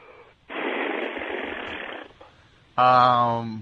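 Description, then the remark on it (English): A person blows a long, raspy, flatulent buzz lasting about a second and a half, then lets out a short, loud, droning voiced tone, a mouth-made fart-noise impression of a cow's moo. “How about a cow?”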